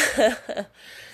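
A short voiced yawn with a breathy, drawn-out quality, trailing into a second softer exhale before fading to quiet.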